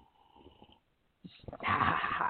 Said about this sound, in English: Well, this morning I am slurping.